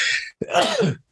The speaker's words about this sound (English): hold on a second. I gotta sneeze.